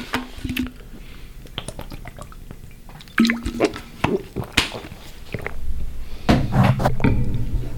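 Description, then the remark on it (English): Someone drinks water from a bottle: a series of wet swallows and liquid sloshes mixed with sharp plastic clicks and squishes, with no talking. “Needed a water break for that one.”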